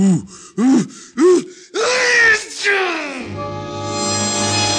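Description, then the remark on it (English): A loud sneeze: three short, rising gasping breaths build up to one big explosive burst, followed by a sustained, steady musical tone. “I left Sneezy with another Gesundheit and went out the door before he blew me out.”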